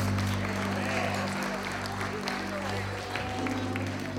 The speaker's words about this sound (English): Come on and give me a hand clap of praise in this house today.